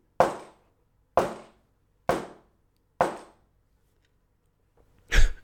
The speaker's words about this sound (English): So if you saw me like pause momentarily ago there, and I was just like, I made like a weird face, it's because I can hear the neighbor banging on the wall like a mental patient.